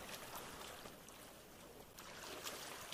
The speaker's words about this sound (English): Oh, shit. There's a boat.